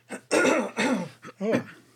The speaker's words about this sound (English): Just clearing my throat a lot.